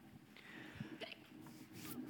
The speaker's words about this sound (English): I don't know what to, like, God bless you. I don't know, like, what to say for a hiccup, you know? You got to receive a blessing either way, I guess, right?